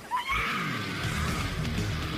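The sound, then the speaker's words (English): A loud, shrill scream, the stock movie sound effect, heard in the film Jack Frost, rises sharply and then holds in a strained, wavering wail for about two seconds. It is dominant, with no talking. “I recognize that scream from something else.”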